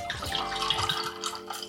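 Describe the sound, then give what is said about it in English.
A steady pour of fizzy Bonacord ginger beer, a naturally sweetened drink from an Edinburgh firm, into a glass: a continuous splashing trickle with bright bubbly crackle, lasting under two seconds with no talking. “And just pour that in.”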